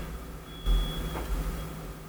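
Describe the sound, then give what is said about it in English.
A steady, high-pitched alarm tone drones from somewhere outside, fairly faint, over a low rumble of street or vehicle noise. No one speaks. “There's an alarm going off, everyone listening to this.”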